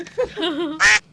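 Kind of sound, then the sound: sound effect, duck quacking sound effect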